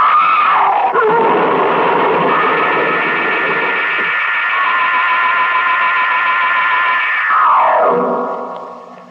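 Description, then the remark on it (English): A loud car crash: a sustained, harsh screeching squeal with a rough, distorted edge runs for several seconds, then slides downward in pitch and fades out. No one speaks. “I wasn't even... scratched in the crash.”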